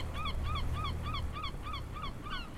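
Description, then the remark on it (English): Birds squawk above the waters of the Harrow Strait at midday in a quick, steady series of about seven harsh, honking calls, fairly clear, over a low rumbling background noise. “2 weeks later, with the midday sun reflecting brightly off the waters of the Harrow Strait, birds squawking above, Prosper pulled cheerily alongside the Arcata.”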